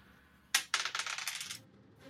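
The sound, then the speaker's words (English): A sharp clack, then a quick rattling tumble of dice clattering across a table for about a second before settling. No voices. “Gotta love birthday dice.”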